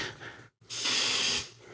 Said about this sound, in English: I just sprayed an aerosol deodorant at the microphone. I probably shouldn't have because that. So I forgot it's one of these 48-hour ones that have extra gaseous, stronger.